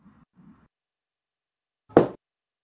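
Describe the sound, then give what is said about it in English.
Knocking an SOS code on a door: two soft, muffled knocks, then after a short pause a single louder, sharper knock, with no voices. “No, I'm going to knock in code. Knock in code. Okay, what code do you knock upon the door? SOS.”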